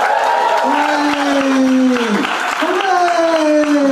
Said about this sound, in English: did you hear that person cheering for me? I did.